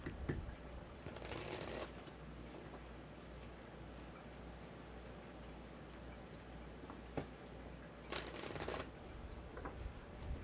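Two quick bursts of riffle-shuffling cards, one early and one near the end, crisp, with soft handling and tapping of the deck in between against a low steady hum.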